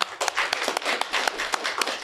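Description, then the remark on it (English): At a chapter meeting, an audience applauds to welcome two guests, a dense, steady wash of many overlapping claps, bright and fairly loud, sustained for the whole couple of seconds with no voices over it. “So join me in a round of applause of welcoming these two fellas to our chapter meeting.”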